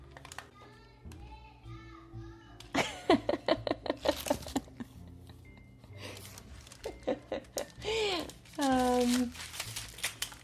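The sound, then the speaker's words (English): Paper crinkles and rustles in quick, uneven bursts as it is shaped around a log of dough and pressed with a ruler into a cylinder, while a small child fusses and whines about taking a nap, growing louder toward the end. “Now, if you turn it around and take a ruler and press the ruler into the crease between the dough log and the 2 halves of paper, you can push it into a perfect circle.”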